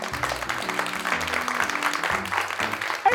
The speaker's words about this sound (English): Ladies and gentlemen, we have two very special guests joining us today on Kaun Banega Karorpati. Please give a big round of applause for Coco and Leila.